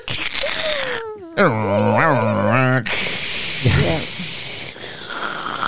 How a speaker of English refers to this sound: And she gets on the computer by the name of Shop Girl, and we hear that famous modem sound.